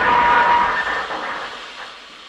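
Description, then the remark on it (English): A train rolls along the rails past Berwick Abbey with a loud, steady roar and a brief high metallic squeal near the start, gradually easing off over a couple of seconds. “I noticed a photo of Berwick Abbey, which we were just passing at the time, and so, on a whim, I pulled the emergency stop, paid the fine, and stepped lightly from the train.”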